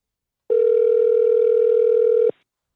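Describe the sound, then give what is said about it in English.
A single steady electronic telephone tone as a call is placed to a show guest, holding one mid pitch for about two seconds before cutting off abruptly, with no voices. “So let's give him a call right now.”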